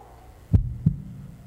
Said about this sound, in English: And with that first heartbeat of man, something started. Something that we couldn't fathom. With that first heartbeat, creation began.